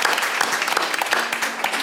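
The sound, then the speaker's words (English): An audience at an evening climate change and environment series event claps steadily, a dense wash of many hands clapping at once with no clear rhythm, fairly loud and sustained throughout with no voices standing out. “So give yourselves a hand for caring about climate change and our environment.”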